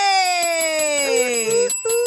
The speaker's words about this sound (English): Hey! Oh, y'all had to get used to the Bell.